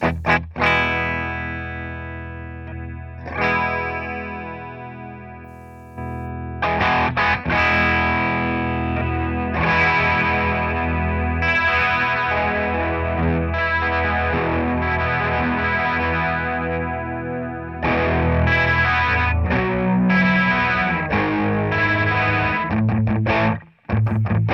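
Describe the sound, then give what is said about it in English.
An electric guitar plays loud sustained chords and riffs through a chorus effect into a distorted amp, giving a thick, shimmering, gritty tone. It plays alone with no voices. “sort of a chorus into the front end of a distorted amp sound”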